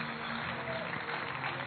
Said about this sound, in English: Clap for them.